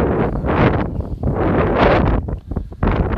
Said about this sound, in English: Sorry, it's a little windy.